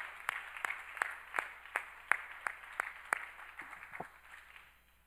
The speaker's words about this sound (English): Come on, clap your hands to the Lord and thank him right now. Thank you, Jesus.